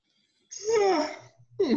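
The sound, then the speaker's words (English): A person lets out a long, drawn-out yawn with a breathy, sliding vocal tone that rises and falls, followed by the start of another breathy vocal sound. “Well, despite my yawn, that indie spotlight was much more compelling than number one, so.”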